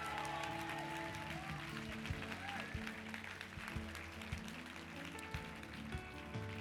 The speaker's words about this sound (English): Come on, clap for Jesus real quick.